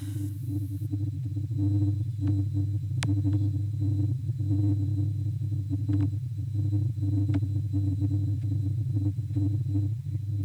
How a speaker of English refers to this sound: So at this point in time, I'm actually going to play a recorded version of the hum. In 3, 2, hum.